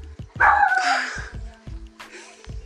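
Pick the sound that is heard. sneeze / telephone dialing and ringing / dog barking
dog barking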